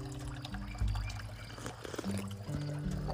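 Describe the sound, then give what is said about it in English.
Coffee pours steadily into a butterfly coffee mug, continuous, its gurgling tone shifting as the cup fills, with no talking over it. “Oh, I love this delicious, delectable cup of coffee. And I'm using my adorable butterfly coffee mug that I love, that I got for my sweet home, Colorado.”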